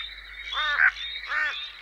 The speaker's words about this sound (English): Whoa, listen to them all. Oh, deadly. I can hear frogs.